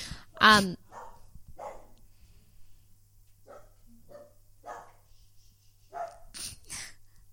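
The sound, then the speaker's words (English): A dog, Tarzo, a bit of a guard dog living in an apartment building, lets out one loud bark at the start, then a quick pair of sharper barks near the end, with quieter murmuring voices in between. “He's a little bit of a guard dog, which is not ideal when you live in an apartment building with hundreds of other people.”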